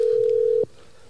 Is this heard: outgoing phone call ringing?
yes